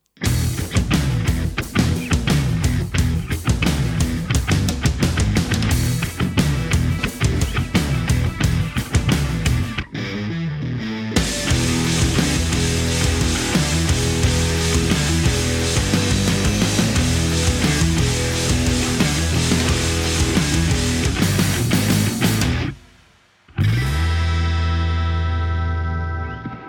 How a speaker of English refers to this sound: You know, I popped into Logic and I figured, okay, what does a car commercial sound like? And it ended up, it sounded like, to me, like this.